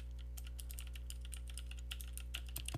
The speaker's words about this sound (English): I was gonna use my keyboards, and I thought maybe, does this sound good if I was like typing while I was podcasting?